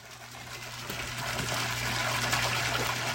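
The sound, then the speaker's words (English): Steady rushing water of a waterfall pours continuously, a broad, hissing roar, with a faint low hum underneath and no voices. “I remember one day in my parents' house, near the waterfall,”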